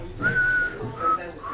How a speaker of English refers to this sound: I was trying to whistle.